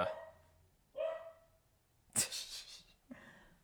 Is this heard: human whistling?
no